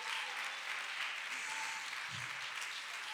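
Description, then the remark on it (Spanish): An audience applauds for the Lord, a dense, continuous wash of many hands clapping at even loudness throughout, with no voices standing out above it. “Denle fuerte aplauso al Señor, hermano.”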